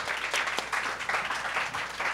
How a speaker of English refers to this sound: Round of applause, please, for our team debating for the motion.